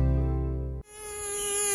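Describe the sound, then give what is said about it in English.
A mosquito buzzing, starting as a low droning hum and then abruptly shifting to a thinner, higher-pitched whine that holds steady. No voices, just the insect sound alone. “A mosquito plague is currently raging across the 1FM listening area.”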